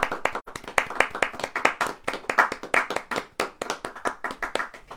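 A group of people clapping their hands in a steady, dense flurry of sharp claps, sustained for several seconds at moderate loudness with no voices over it.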